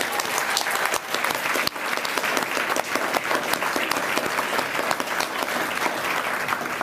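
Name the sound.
audience applause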